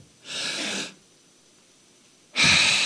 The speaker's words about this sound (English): Okay, watch this. One, two. Number one or number two? Which part was I breathing? Right. If you don't do one of them, you'll die. You need both.